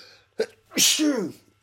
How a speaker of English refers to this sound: Oh, it feels good to sneeze.